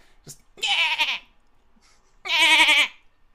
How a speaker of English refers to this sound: As all of these cheers are happening, you also hear the braying of a goat.